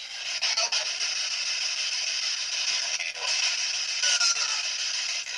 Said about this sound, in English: What you're hearing on there is just this regular radio frequency interference, but when you do get a response, you know.